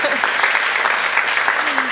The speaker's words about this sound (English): That deserves a clap.